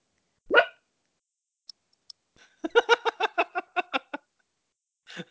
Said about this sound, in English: Callie barks. Moving on. I said moving on, Callie. That means you stop.